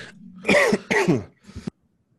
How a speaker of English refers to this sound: You all right, bro? You having a coughing fit?